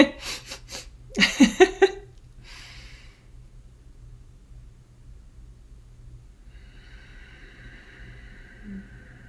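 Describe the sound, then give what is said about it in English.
In a guided breathing exercise, audible breaths push air out through the nose on a count of four in a few strong, breathy bursts, then a quieter, slower airy breath follows over a low steady hum. No one speaks. “Anyway, let's start by taking a couple nice deep breaths here in through the nose on the count of four or with the count of four, and then exhaling again through the nose with the count of four.”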